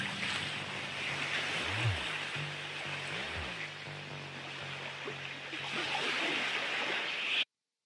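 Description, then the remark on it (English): Rough ocean water surges and roars around a small boat, with wind rushing over a low engine drone and two deep heaving swells rising and falling. No one speaks. “And if we use the same analysis method, we can estimate that the height of the waves to be as high as 10 feet. On smaller boats, waves this high can definitely be considered life-threatening, even for experienced fishermen.”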